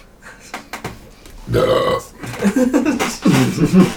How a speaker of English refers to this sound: There's some random guy on the back that just belches. Well, that one had lunch.